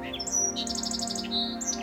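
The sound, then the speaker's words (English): A streaky brown North American sparrow sings clearly, opening with a few separated whistled notes, then breaking into a quick run of repeated trilling notes before ending on more drawn-out whistles, over a steady low background hum. “They usually begin their song slowly, with spacing between notes, and then continue with faster notes and trills.”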